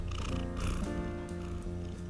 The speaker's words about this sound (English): The cat's here. Yeah, Abby's purring. Just come and sat down. Is that happy? Do you want to listen to Abby to have a purr?